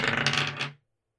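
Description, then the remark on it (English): A d20 die is rolled for a check in a tabletop role-playing game, clattering across a hard tabletop in a quick burst of bright rattling clicks for under a second, then stopping abruptly into silence. No one speaks. “Give me a d20 check. Don't roll a one.”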